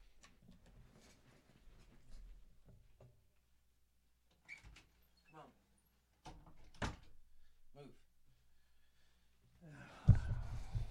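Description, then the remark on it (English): A door is handled as it is opened to let a dog in: scattered clicks and knocks, a sharper thump midway, then a louder, rustling bang near the end as it swings and settles. “I had to let the let my dog in. He was scratching at the old door going, "Hey, Daddy, let me in."”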